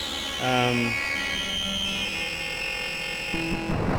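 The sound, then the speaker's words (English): Electronic tones from a modified electronic instrument step through a scale, each a steady buzzy pitch rich in harmonics, with a few held notes changing pitch over several seconds and a faint background hiss. “So it can play in a scale.”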